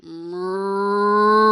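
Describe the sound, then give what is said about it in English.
A human voice imitates a cow's moo heard from the back of a room: one long, steady, rising low drone that swells in loudness over about a second and a half, clear with no other sounds. “And I can only describe what happened as mooing.”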